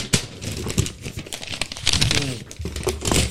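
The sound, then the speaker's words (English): A standard-size sheet of notebook paper being crumpled close to the microphone, a dense run of crackling, crinkling bursts lasting a few seconds, with faint voice sounds mixed underneath. “You crumbled it up in the microphone before we started.”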